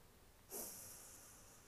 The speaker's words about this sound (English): Breathing in through the nose.